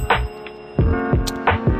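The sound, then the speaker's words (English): A hand bell is rung on the Jeff is Moody Show in quick, uneven shakes, each clang bright and metallic with a lingering ring. About five or six strikes come in under two seconds, with no voices. “Please honk your horn for me while I ring my bell for you.”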